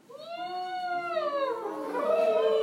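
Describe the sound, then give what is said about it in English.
During a yoga side-body stretch, a person imitates an elephant's trumpet by putting air through closed lips, a sustained, wavering, brassy call that rises and bends in pitch, loud, lasting a couple of seconds. “That's a pretty good elephant.”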